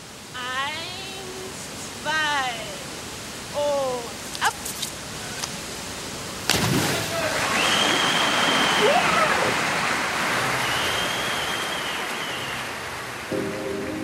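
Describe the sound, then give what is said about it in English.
A sharp splash cuts in halfway through as a diver enters a pool, then gives way to a steady, churning wash of underwater bubbling, picked up by a microphone at the bottom of the pool, that lasts to the end. Short chirpy tonal calls come before it. “When the athlete goes under the water, we shift the perspective to just them and the underwater sound. You hear the bubbles.”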